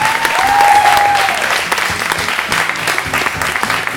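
An audience claps loudly and steadily in a dense, sustained burst of applause, with a brief whistle early on, continuing for several seconds without speech.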